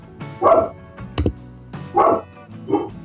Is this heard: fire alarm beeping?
no